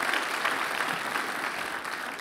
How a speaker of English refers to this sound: If you're thankful for Jesus this morning, would you give Him one big round of applause? Hallelujah.